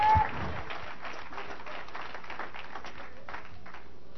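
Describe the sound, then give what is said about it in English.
An audience claps their hands in sustained, dense applause, a steady wash of many overlapping claps at even loudness, with faint voices mixed into the noise. “Clap your hands and shout, we want it like that.”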